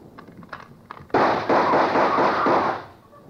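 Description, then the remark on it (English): A sudden burst of gunfire from a gun outside a door erupts after a quiet moment as the door's spring lock is snapped open, several rapid loud reports blurring into a sustained, harsh roar for about two seconds before trailing off. No one speaks. “the gun outside opened up.”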